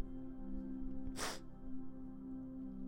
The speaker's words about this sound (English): Sniffles.